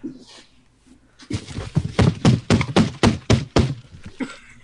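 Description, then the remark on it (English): Someone bangs on a box with a quick run of about ten loud, hollow thumps in a fairly steady rhythm, then it stops. No one talks. “Oh, yeah, about the box banging? Yeah, the box banging.”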